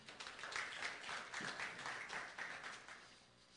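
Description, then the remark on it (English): A church audience applauds, a dense, steady wash of many hands clapping that holds at an even level for several seconds and then tapers slightly, fairly soft overall, with no voices. “Give yourselves a round of applause, if you would.”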